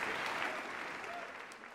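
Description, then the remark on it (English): An audience claps steadily, a dense crackle of many hands sustained throughout at an even, moderately loud level before easing slightly at the very end. “It's not funny, but it is something to clap about.”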